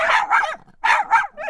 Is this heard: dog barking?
yes